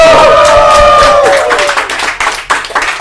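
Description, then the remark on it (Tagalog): A short burst of applause and cheering: dense clapping with a high, sustained whoop at the start, thinning into a few scattered claps before it stops. “Oh, palakpak muna!”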